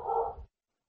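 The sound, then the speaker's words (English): A single short dog bark, slightly muffled, from one of several dogs barking at something outside, lasting about half a second before everything falls silent. No one is talking. “Corey has a lot of dogs and they bark at the same things all the time, so they're insane.”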